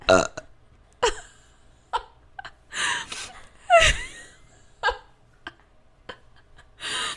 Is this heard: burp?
yes